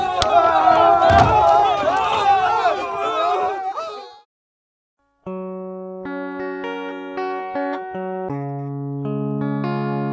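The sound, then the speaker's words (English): A loud crowd, including three teams and reporters, brawls in an all-out free-for-all with overlapping shouts and battle cries for about four seconds, then cuts off abruptly; after a short silence, steady electronic synth tones play alone. “This seems to incite the crowd to action, and an all-out brawl ensues with all three teams and the reporters caught up in the free-for-all.”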